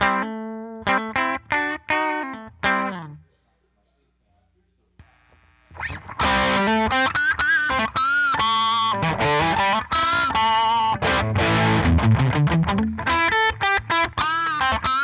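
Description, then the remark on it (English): A distorted electric guitar, a Strat with single-coil pickups played through a RAT distortion pedal, plays choppy notes, pauses briefly, then returns with loud, sustained gritty riffing and squealing pinch harmonics. “You got some nice pinch harmonics in there.”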